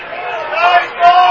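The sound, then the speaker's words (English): A stadium crowd reacts to a pass interference penalty thrown by the back judge against Speakman with a sustained, mid-pitched roar of many voices, swelling louder toward the end of the brief moment. “So the pass interference penalty called against Speakman. And you can tell how the crowd feels about that.”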